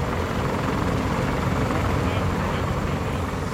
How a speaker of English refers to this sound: You've got Marines taking off in helicopters, clattering away into the jungle. Some of them are carrying ultralight vehicles that will act as their mobile command post.